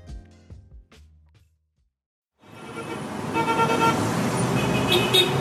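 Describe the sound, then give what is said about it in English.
After a brief silence, loud, dense city street traffic in Caracas, Venezuela rises up, heard from inside a bus: a steady rumbling roar of engines with a car horn tooting now and then. “Right now, you're hearing the streets of Caracas, Venezuela, specifically inside a bus.”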